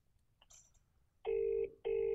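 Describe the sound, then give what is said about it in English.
A mobile phone rings with two loud, steady electronic tones separated by a short gap, preceded by faint background rustling. “It literally, for 10 That's minutes, all right, yeah. It's just going off.”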